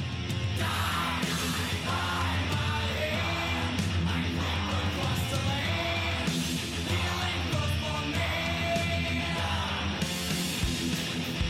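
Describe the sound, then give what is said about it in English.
Christian hymn music plays continuously at a steady, full volume, with voices singing sustained, harmonized lines over a dense instrumental accompaniment. “Let's listen to some of this Christian hymn.”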